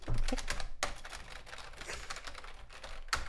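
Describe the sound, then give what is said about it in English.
Rapid, clattering computer keyboard typing with a crisp, typewriter-like click, fairly loud, with a couple of sharper louder key strikes standing out; no one speaks. “Doesn't that sound like a typewriter?”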